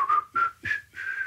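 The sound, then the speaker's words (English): A person whistles a short McDonald's advertising jingle: four quick notes stepping slightly upward, clear and moderately loud, with no talking. “I could have whistled that better, couldn't I?”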